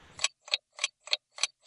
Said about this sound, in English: And the alarm bell, as always, brings to an end another interview show.